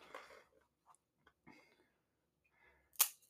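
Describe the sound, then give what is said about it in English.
A thick hard plastic HGA graded card slab creaks and strains in a few short bursts as it is being cracked open, then gives way with one sharp, loud crack near the end. No talking. “We're gonna make sure you guys are shielding your ears so shards of plastic do not fly in and get you here.”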